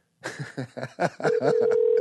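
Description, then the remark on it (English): A quick series of short electronic phone tones leads into a steady, continuous line tone that holds to the end, an outgoing call to a guest connecting and ringing through a handset. “Answer the phone. Answer the damn phone.”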